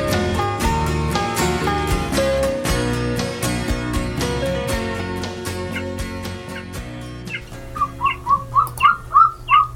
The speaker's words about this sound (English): The cry of the golden eagle is very memorable. The golden eagle is one of the best-known birds of prey in the Northern Hemisphere. It's also one of the largest birds in North America, with wings that are longer than a red-tailed hawk.